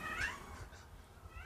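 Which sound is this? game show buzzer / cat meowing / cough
cat meowing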